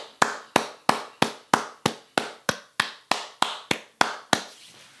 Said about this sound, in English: That's me clapping for black people.